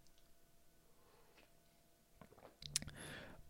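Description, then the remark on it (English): A quiet pause, then a coffee cup clinks, followed by a short, soft slurping sip of coffee near the end. No one speaks. “Let me take another sip of my coffee here for you.”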